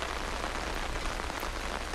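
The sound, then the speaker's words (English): Steady rain patters on the taut surface of a tent on a rainy May day, a dense, even hiss of countless drops with no pauses and no voices. “I'm huddled up in my ear tent, knocking back a couple books off my reading list, while the pleasant pitter-patter of Mother Nature takes me outside my head for a while.”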